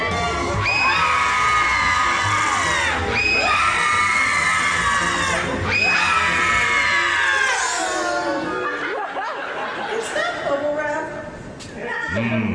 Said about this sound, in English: Well, let's give all of these guys one last chance and see how they pass the companion scream test.